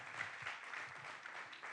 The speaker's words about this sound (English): Thank you for coming out. Come on, give him a big round of applause.